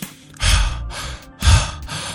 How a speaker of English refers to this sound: I'm breathing, right? And I'm just breathing. Breathing is cool. I like to breathe.